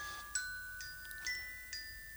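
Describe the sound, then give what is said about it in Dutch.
A phone timer alarm chimes in a repeating pattern of bright, high-pitched tones, ringing out about four times at a steady pace with sustained ringing between hits, fairly quiet with no talking. “De tijd is om, zegt de telefoon.”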